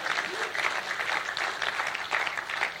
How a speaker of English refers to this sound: Oh, come on, if you're going to clap, make sure it's a good one.